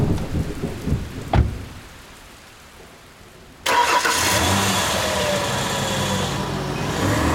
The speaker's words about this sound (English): Okay, you guys are also, all of you guys are just soaked to the bone now with how long you've been out in the rain. And you guys are getting, it's just freezing.